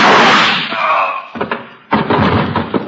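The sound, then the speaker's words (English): A loud, sharp gunshot fired through a door transom rings out with a lingering echo, then two more heavy blasts follow in quick succession, forceful, with no one speaking. “Those shots came through the transom.”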